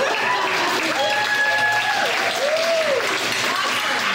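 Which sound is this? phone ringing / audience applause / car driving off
audience applause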